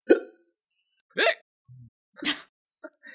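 A person hiccups about four times, sharp, abrupt bursts spaced irregularly over a few seconds, moderately loud, with faint breathy sounds in between.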